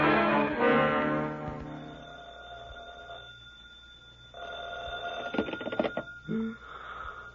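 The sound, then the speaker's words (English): A telephone rings loudly in two long tonal bursts separated by a pause, with a short clatter at the end and no voices. “Well, I've been answering my phone this way all week.”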